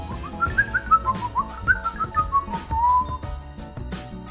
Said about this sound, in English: Can you hear the birds?